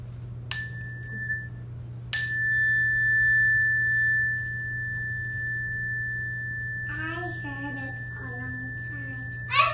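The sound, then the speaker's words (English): A bright chime is struck once lightly, then again firmly, its clear metallic tone ringing on and slowly fading over several seconds while children, sitting calmly with hands on knees, listen and murmur quietly underneath. “Only raise your hand when you don't hear the chime anymore.”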